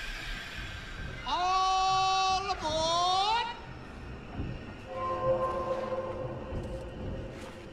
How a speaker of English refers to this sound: the young boy is awakened because a steam locomotive runs outside, and he runs outside in his bathrobe and his slippers, and the train stops in front of his house